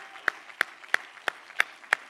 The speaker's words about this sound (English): Oh, I wish you would clap your hands to Jesus today.